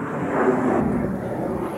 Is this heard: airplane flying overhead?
yes